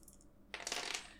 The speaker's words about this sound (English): Okay, and I need to roll 4s and up. Let's keep it nice and even. I'm going to roll 4 dice.